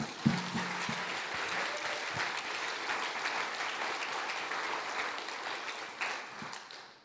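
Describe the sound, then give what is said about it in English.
A steady round of applause from a group, given to God: dense crackling claps sustained for several seconds with no one speaking, swelling slightly near the end before tapering off. “Give a round of applause to God.”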